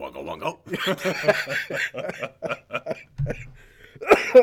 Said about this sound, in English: I'm getting over being sick, so apologize for the coughing.